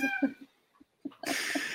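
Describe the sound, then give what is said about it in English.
A male cat meows, a drawn-out cry followed after a short pause by a louder, harsher meow that fills the second half. “Ghost wants to say hello as well”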